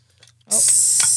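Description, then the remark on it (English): After a brief quiet moment of faint clicks, a sudden loud, bright hiss bursts out and holds steady, like gas rushing from a drink bottle as its cap is twisted open. “Did you hear that hiss?”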